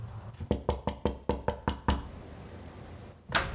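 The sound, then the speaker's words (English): A quick series of about eight sharp, solid knocks on the front door of a house in an even rhythm, fairly loud, followed by quiet and a brief rustling hiss. “Let's go ahead and knock on the front door.”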